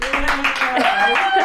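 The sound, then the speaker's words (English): A burst of canned applause from a newly installed studio applause button being pushed: dense, steady clapping from a crowd, with cheering voices mixed in, loud throughout and holding at an even level for the whole short stretch. “We just got a new applause button installed in the studio.”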